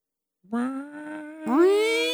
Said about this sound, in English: It should be a cat.